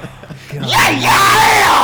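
Loud, raw yelling from more than one voice erupts into microphones, overlapping and sustained, with harmonic shrieks rising and falling after a brief lower vocal lead-in.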